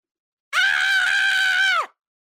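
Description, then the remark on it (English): A single sustained loud scream holds steady for over a second before dropping off in pitch at the end, like someone yelling while falling. “You scream. That's the first thing you're going to do when you fall.”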